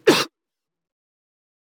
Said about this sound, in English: We don't need to magnify my coughs.